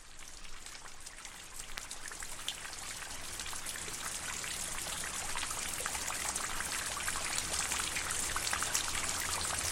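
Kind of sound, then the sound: nature, rain falling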